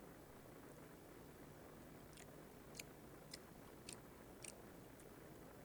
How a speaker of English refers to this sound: Yeah, chewing gum is out. I'm not eating chewing gum. I'm not. Seriously, I'm not. I'm eating fruit pastels.